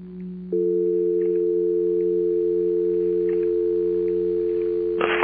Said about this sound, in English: Hum of the dial tone that was always there. It was a nice warm tone. It never yelled. It never fought.